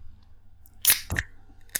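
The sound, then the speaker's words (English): A drink can being opened: a sharp metallic crack followed by a short burst of fizzing hiss, then a smaller click a moment later, with no talking. “I think we were both paying chicken when we opened our can first.”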